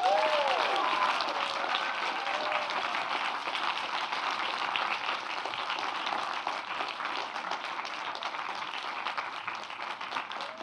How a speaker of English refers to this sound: So, without further ado, can you give a massive round of applause for the show's creator, Daniel Chong?